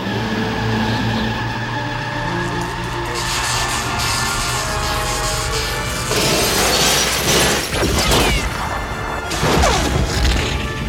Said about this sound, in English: The Ark theme plays as the Ark destroys all of the Nazi lighting and camera equipment.